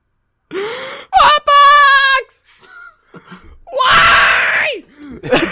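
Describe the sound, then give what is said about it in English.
A person voices a loud, strained monster-like scream, rising and wailing in several harsh bursts with gasping breaks between them, mimicking the roar of the giant ape Mongo. “And he's just like screaming, and that also just deafens it.”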